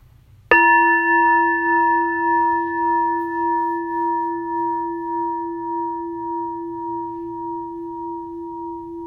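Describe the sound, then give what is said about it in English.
A single meditation bell is struck once at the start of a sitting meditation and left to ring, its clear tone shimmering and slowly fading over several seconds with no voices. “And we'll start and end with the bell.”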